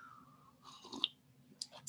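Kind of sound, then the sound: food or drink, sipping coffee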